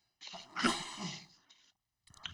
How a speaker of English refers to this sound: It's just a sneeze